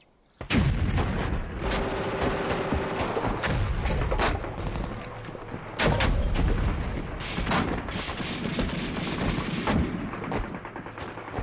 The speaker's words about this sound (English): Sitting in a trench, amidst all the gunfire, is the composer, Vernon Dare, transcribing the sounds.